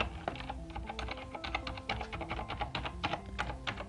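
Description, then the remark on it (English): Steady, rapid typing on a silent mechanical keyboard, the keystrokes soft and muted in an irregular flurry, with a faint tonal backdrop underneath and no voices. “So right now I have it right in front of me, so I'll start typing.”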